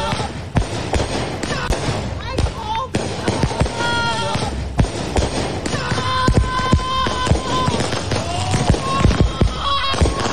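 Neighbors let off fireworks in a street: a dense, irregular barrage of sharp bangs and crackles lasting throughout, with whistling tones rising over the din and an upset woman's voice saying stop over and over amid the noise.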